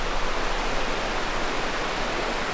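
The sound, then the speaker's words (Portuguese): Steady, dense rushing of water from a waterfall just ahead, heard while passing a stream, a continuous hiss-like roar that stays even and fairly loud throughout, with no voices or other sounds. “Estamos passando por um riacho e eu acho que a cachoeira é logo ali na frente.”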